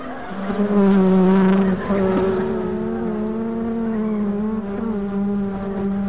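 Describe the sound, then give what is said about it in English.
A dense, steady insect buzz drones loudly and continuously, a swarm of killer bees escaping, with a sustained low hum and slight wavering pitch throughout. “What was that? That would be the killer bees.”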